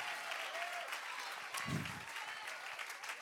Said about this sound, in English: Give him 10-second hand clap right now. Just give hell a nervous breakdown real quick.